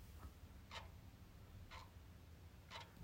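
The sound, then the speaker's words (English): A clock ticks steadily about once per second, each tick a soft, crisp click heard up close over a quiet, faintly rumbling room background. “You know, if I put this close enough, you can hear the clock.”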